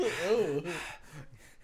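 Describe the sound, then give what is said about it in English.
A voice acts out a man's heavy, ragged gasping breaths, a strained inhale with a wavering pitch followed by shorter, fading breaths, fairly loud. “He's breathing hard.”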